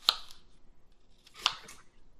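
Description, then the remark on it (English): Two crisp, crunchy cuts about a second and a half apart, each a sharp snap with a short trailing scrape, as a knife slices an apple as thinly as possible. “Okay, so I'm just going to cut this as thinly as I possibly can, safely.”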